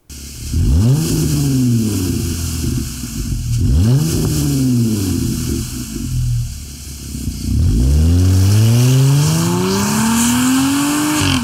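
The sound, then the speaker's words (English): A Jeep Gladiator with a Borla exhaust revs up hard three times, each rise climbing sharply then dropping, the last rev held longer, loud, with no talking. “let's listen to this Gladiator one more time.”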